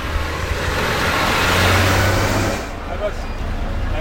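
A car drives past on a busy road, its rushing engine and tyre noise swelling to a peak mid-clip before fading, with a steady low traffic rumble underneath.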